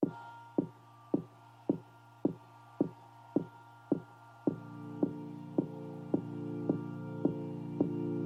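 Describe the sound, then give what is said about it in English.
The intro of a dark pop song: a steady, heartbeat-like thudding beat over low sustained droning tones, with brighter held notes joining about halfway through; instrumental with no voices, moderately loud. “with that, I'm going to go ahead and play our middle song.”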